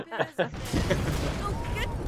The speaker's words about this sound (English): Oh, explosions.